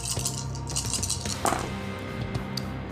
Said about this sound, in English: Roll so many dice.